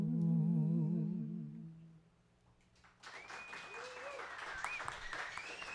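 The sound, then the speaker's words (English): A held vibrato note from a singer fades out, and after a short pause an audience breaks into dense, steady applause, with shrill whistles rising above the clapping. “Round of applause”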